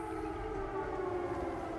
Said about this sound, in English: President Biden making a surprise visit to the Ukrainian capital of Kyiv today, walking through the streets to the sounds of air raid sirens.